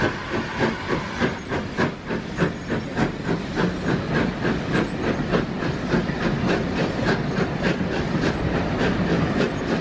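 Steam train coaches roll steadily along the rails with a close, continuous rhythmic clickety-clack of wheels over rail joints, a broad rumbling hiss underneath and no voices.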